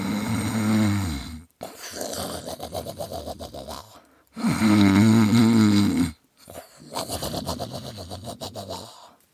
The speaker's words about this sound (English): Gordon Fox knew that someday his exceedingly loud snoring would be his undoing.